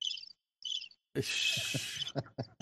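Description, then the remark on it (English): A crickets chirping sound effect in two short, high, trilling bursts separated by a brief silence, followed by a louder stretch of hissy noise with voices talking over it. “Birds. That's probably about accurate right there.”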